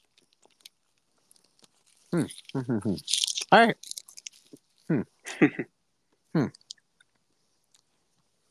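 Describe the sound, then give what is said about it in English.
Crunching and chewing of a crisp, crunchy snack food, a few bursts of mouth noise mixed with short murmured sounds and a brief spoken remark. “But this crunchy is really good.”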